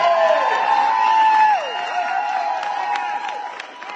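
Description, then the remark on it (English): A crowd at a Republican primary campaign event, where the speaker argues against Governor Abbott's reelection, cheers and applauds in a steady roar. Drawn-out shouts and whoops ride over scattered sharp claps, and the noise holds loud throughout, easing slightly toward the end. “Real energy there. And it's, you know, a decent sized crowd, but I mean, we're talking about a Republican primary where, you know, north of a million people are going to vote, right?”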